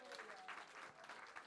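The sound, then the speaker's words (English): A church audience claps for God and Jesus and for the choir, a dense, steady wash of many hands applauding together, even with no break in the clapping. “Will somebody clap for God, clap for Jesus for our choir?”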